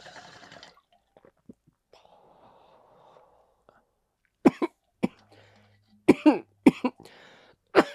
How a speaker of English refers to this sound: hasn't coughed like that in a minute. So. Damn. So the cold can induce that cough